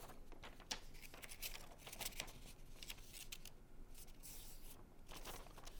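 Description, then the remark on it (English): Quiet paper rustling and crisp creasing as a sheet is folded into a paper airplane and its points are made, with soft crinkles and sharp little presses coming in irregular bursts and no voices. “Let's keep folding our paper. It's time to make the points of our plane right here.”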